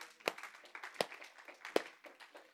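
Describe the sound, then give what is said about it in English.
A group clapping: three sharp, loud claps land at roughly even intervals over a softer, continuous patter of scattered hand claps, with no voices heard. “One class, we all clap.”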